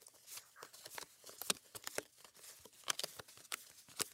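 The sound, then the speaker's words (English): A Karma Bliss affirmation card deck being shuffled in a quick flurry of crisp, papery riffles and slaps, irregular bursts of bright crackling texture over about four seconds, fairly soft and with no talking. “I'm going to shuffle my Karma Bliss affirmation deck.”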